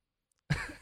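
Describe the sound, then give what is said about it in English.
A single sharp cough bursts out of silence, a low, throaty burst that stays rough and breathy as it trails off without any talking. “Hello, cough there.”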